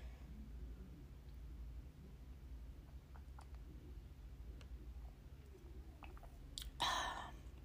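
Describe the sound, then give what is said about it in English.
Someone quietly sips a drink of water, with faint wet mouth clicks and small swallows over low background hiss, ending in a short, louder breathy exhale. No one speaks. “Let me just get a sip of water.”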